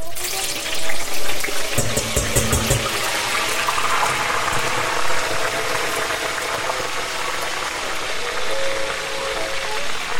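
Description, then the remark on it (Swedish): Dense, steady sizzling and bubbling of eggplant deep-frying in hot oil that dropped from 180 to 130 degrees, with the heat turned to full; a loud, constant crackling hiss with a few sharper bursts early on and no voices. “Så att full spett på det här nu så det hinner fritera verkligen.”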